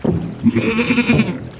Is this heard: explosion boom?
no